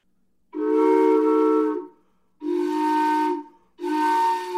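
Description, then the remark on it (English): A toy four-in-one train whistle with three pitches, each of which can be turned off with a small metal stopper, blows three long, breathy blasts, each a chord of several steady pitches with an airy hiss on top. The last blast is cut off, and no one speaks. “And the cool thing about this one is you can turn each, it has a train whistle has three pitches and you can turn each one off. So I'll show you how that sounds.”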